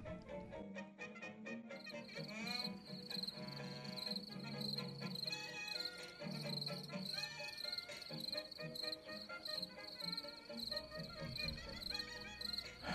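Crickets chirp in a steady, continuous trill of fast rhythmic pulses, fairly loud, with a low murmur of other background sound underneath and no talking.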